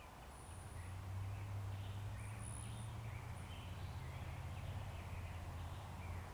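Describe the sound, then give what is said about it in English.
Faint birds chirp and trill in short high bursts over a steady low outdoor hum, with no voices present. “These birds are singing all day long.”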